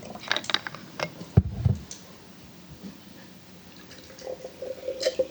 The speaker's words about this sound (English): Will you pour me a shot of that in that red one?